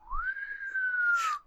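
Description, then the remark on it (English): A single clear whistle, given in response to a joke, rises quickly, holds a steady pitch for over a second, then dips slightly and ends with a breathy burst. It is loud, with no talking. “Snappy whistles to stupid jokes.”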